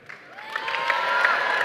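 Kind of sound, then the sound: crowd, applause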